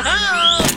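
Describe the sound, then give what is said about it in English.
A pet guinea pig lets out a single loud, high squeal that climbs steadily in pitch, then breaks into a brief rough burst of noise at the end. “when she's not threatening to leave us to open up a guinea pig farm”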